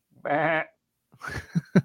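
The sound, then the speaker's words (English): A person imitates a sheep's bleat with one loud, wavering, quavering call, followed after a short pause by a brief burst of talk. “You bawling like a sheep.”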